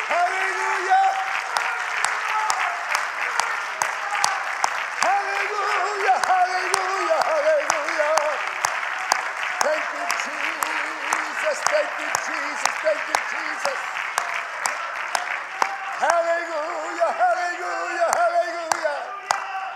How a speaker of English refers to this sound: Yeah, let's all clap our hands for the Lord, shall we?